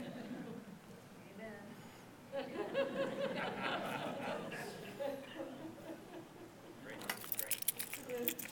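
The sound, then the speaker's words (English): A short burst of keys jangling on a key chain holding a truck key, a house key, an office key and a master key, a bright metallic jingle rising near the end over a murmur of voices and soft laughter. “Keys gives you access, for instance, on this key change is my truck key and this is my house key.”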